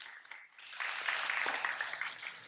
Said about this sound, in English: Thanks to the worship team who's done an amazing job and to everyone else. It's good to be here. Yeah, you can clap.